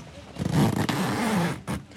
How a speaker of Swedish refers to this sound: Tält. Oh. Dragkedjan. Vi har problem med dragkedjan.